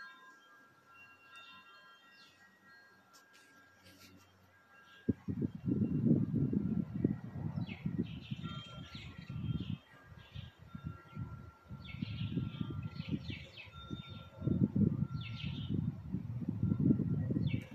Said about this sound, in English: And listen to these birdies too.